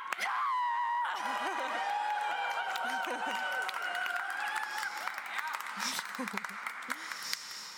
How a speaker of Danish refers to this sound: Og så synes jeg lige, vi skal have et jubelråb mere på tre. 1, 2, 3!